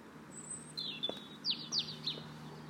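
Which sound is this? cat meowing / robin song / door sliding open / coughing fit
robin song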